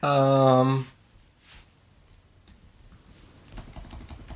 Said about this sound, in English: I'm thinking of a noun. I thought you were just typing it and you're like, okay, next.